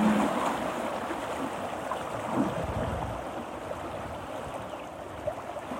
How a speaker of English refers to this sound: Boom, boom, boom, boom. Sings the river. Boom, boom, boom, boom.